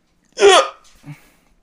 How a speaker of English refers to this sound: Me, my brother, and my dad are the only people on the face of the planet that I know that have those one really loud, aggressive hiccups, and then we're just done.